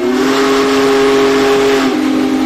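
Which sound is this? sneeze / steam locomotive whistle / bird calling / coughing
steam locomotive whistle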